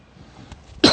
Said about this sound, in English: I don't like coughing on the thing. That's why I take the smaller puffs. I know. I don't like coughing.